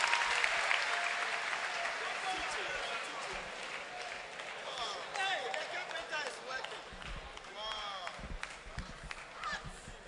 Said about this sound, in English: Clap your hands for the Lord and you may be seated.